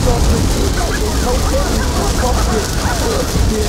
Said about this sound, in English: And São Paulo is like that too, with the rain. Exactly like that. It's summer there, every day, boom.